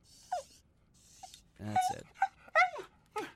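A guard dog whimpers in a series of about five short, high, falling whines, separated by breathy pauses, with no one talking.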